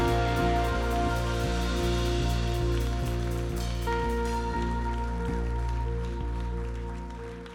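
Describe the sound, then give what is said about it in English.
A church audience at Impact Church claps steadily on a Sunday morning to welcome a visiting pastor's ministry, in a dense, crackling wash of applause over sustained musical chords, the clapping thinning out toward the end. “Please put your hands together and help me celebrate and welcome the ministry”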